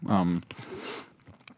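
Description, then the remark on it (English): A short voiced murmur gives way to a second or so of crunchy, crackling chewing, irregular crisp bites of popcorn at moderate loudness with small clicks trailing off at the end, as someone eats popcorn in a room in Oulu, Finland. “And pardon my chewing. I'm eating this popcorn.”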